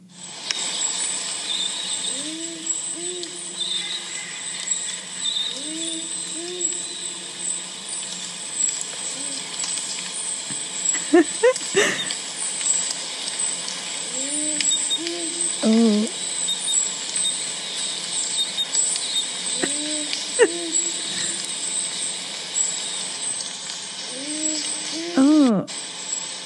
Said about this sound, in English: So I'm going to play you the powerful owl call. Noise. Because is what people try to say the Wilga Waterhole ghost is just the powerful owl.